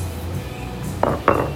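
Two quick clinks of shot glasses of Vexen knocking together in a toast, sharp and bright, the second following the first about a quarter second later, over a low steady background hum.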